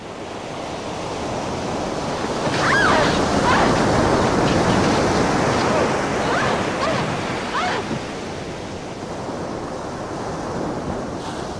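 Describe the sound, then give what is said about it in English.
Rough, angry sea waves churn and crash in a continuous roar at a sandy shore, with surges swelling and receding and some wind noise mixed in, loud throughout. “They latched onto her thin arms with her iron grip and dragged her towards the churning waters of the angry sea.”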